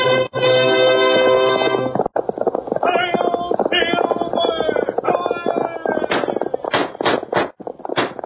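Galloping horse hoofbeats of Silver, the Lone Ranger's horse, pound in a fast, steady rhythm under loud brassy orchestral music in an old-time radio drama broadcast, with several sharp, punchy cracks bursting out near the end.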